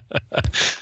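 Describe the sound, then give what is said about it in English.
A single sneeze: a couple of quick, catching intakes of breath build up, then a loud, hissy burst of air that breaks off abruptly, with no talking. “Oh, bless you.”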